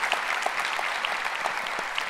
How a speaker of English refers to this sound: I thank you guys so much for what you mean to this church. It wouldn't exist without you guys. So one more time, can you guys just give them a round of applause?